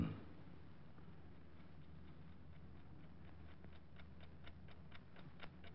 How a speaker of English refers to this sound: Clock is going to drive me crazy. You want me to shut it off? How do you shut off a clock, stupid?